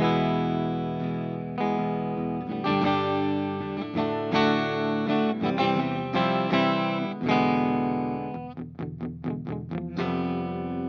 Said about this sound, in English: I'm playing both pickups and the tones are in the middle.